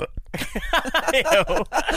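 A long, loud belch, drawn out for well over a second with a gurgling, wavering pitch that rises and falls before it cuts off.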